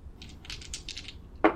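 Dice for a D100 roll clatter across a tabletop during a tabletop game: a quick run of light, rattling clicks for about a second, a brief pause, then a sharper knock as they settle. No one speaks.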